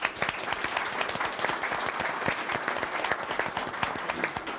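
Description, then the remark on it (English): An audience at an AIA Atlanta event applauds a journalist steadily, dense overlapping claps sustained at an even loudness throughout with no one speaking over it. “So I want us to give a great round of applause to Thomas Wheatley.”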